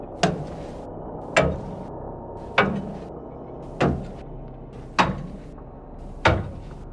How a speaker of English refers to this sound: Heavy shoes atop old, creaky metal, occasional patches of rust scraping off underfoot. Ah, those marvelous details. Whoever approached stopped just shy of coming into view.